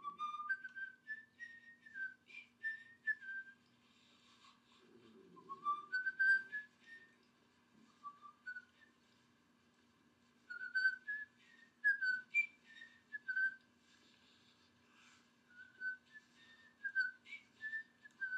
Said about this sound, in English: How come you're whistling? Okay, so now, because sometimes that's just a better way to do it.